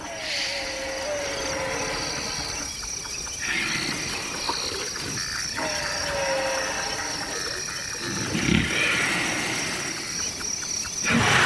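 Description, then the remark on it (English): Slow, deep rumbling snores from elephants sleeping near bystanders in Kenya's Maasai Mara Park come every few seconds, set against a steady outdoor chorus of insects and crickets humming through the night air. “Some even snore while snoozing near bystanders.”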